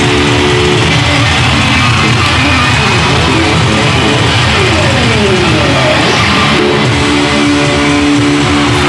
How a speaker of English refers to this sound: It's pitch black right now in this stadium. Except for the lighters. The crowd is going wild.